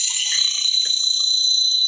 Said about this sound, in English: You can barely hear it. I can barely hear it. Oh, those are birds chirping. That's a weird sounding bird. It's our new bird that we got up here in Jacksonville.